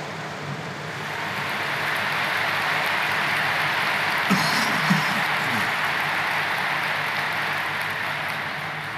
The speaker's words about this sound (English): These are the people that organize everything. A huge applause for that to start with.